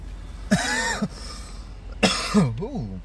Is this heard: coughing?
yes